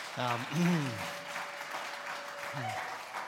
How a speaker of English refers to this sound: And first, I just want to say on behalf of us all, give me a wee round of applause to encourage you.